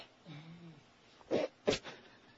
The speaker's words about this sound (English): What is he doing? He's sneezing, but you know how everyone sneezes in a particular way? Right.